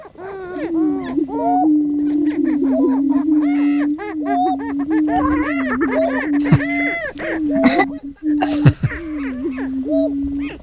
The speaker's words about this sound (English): This is the greater prairie chicken, and this is probably not it either, but yeah, it has a weird sound, so I'll play it for a second. Mm-hmm. Greater prairie chicken.